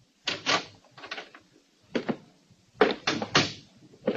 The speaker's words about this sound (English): And when he did answer, he only cracked the door an inch.